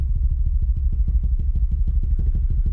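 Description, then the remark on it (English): A drum roll imitated with the mouth: a steady, low, fluttering rumble of rapid pulses that runs for about three seconds without a break, with no talking over it. “Give you a drum roll again.”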